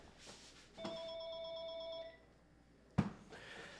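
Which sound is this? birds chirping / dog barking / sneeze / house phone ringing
house phone ringing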